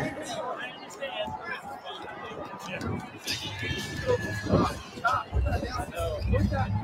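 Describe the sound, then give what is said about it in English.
A large crowd at the Kansas City Super Bowl parade chatters continuously, many overlapping voices blending into a loud, steady hubbub with occasional sharper shouts rising above the din. “This is the Kansas City Super Bowl parade shooting.”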